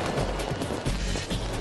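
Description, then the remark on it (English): A public fireworks display in Delhi, India: a dense, continuous wash of crackling fireworks, with a few sharper pops and bursts standing out over a steady roar of noise throughout. “Some cities also put on spectacular public displays of fireworks, like this one in Delhi.”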